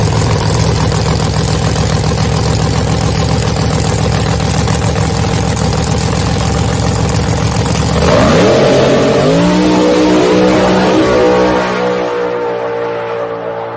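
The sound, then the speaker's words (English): A new drag race car's engine roars loudly at full power for several seconds during a test hit, then the pitch sweeps upward and the tone shifts as the blast carries on and slowly fades, with no talking. “Mike Bowman he has his new car this weekend. And Kevin Stevenson sent us a clip of a test hit on it.”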